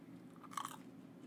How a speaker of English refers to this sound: While this nigga over here crunching on chicken nuggets and shit. You heard that big ass crunch too.